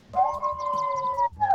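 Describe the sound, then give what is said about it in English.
A sustained, steady howl, heard through an open window, holds for over a second, breaks off briefly, then returns with a shorter rising and falling cry. No one speaks. “The wolves are howling at the door.”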